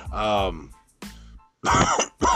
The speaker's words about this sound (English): pardon me, I don't have coronavirus. I do have a cough, though.